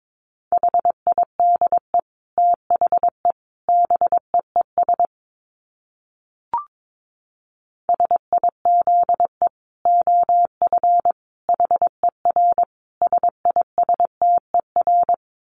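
Morse code sent at 22 words per minute: a single steady mid-pitched beep keyed rapidly into dots and dashes, in two long runs split by a silent pause with one faint click.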